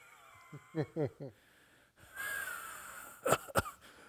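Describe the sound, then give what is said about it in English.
A voice imitates a man's heavy, wheezy breathing behind someone as he tries to quiet it: a few short voiced huffs, then a long hissing exhale, ending in two sharp snorting gasps. “and then next thing you know, he'll try to quiet his breath, his breathing, but it doesn't work too well.”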